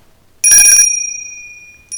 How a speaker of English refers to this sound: Sad bell. That's all we got, man. That's all we got. That was like a condolence bell.